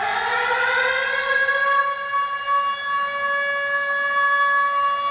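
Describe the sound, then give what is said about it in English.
A loud alarm siren wails steadily for about five seconds, holding a nearly constant pitch with a rich, buzzing stack of overtones and no voices over it. “Ring the alarm, we've got a new patron.”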